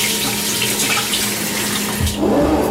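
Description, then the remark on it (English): Four ounces of water stream steadily from a tap or jug into a container of sourdough starter for a few seconds, a continuous hiss that shifts to a lower, fuller gurgle near the end as the level rises. No one speaks. “Now 4 ounces of water.”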